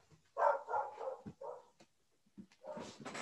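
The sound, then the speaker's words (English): A dog named Tito barks repeatedly outside the window in quick, agitated bursts, a few sharp yips and whimpers mixed in, heard from outdoors through a window. “You may be wondering who that is outside the window barking.”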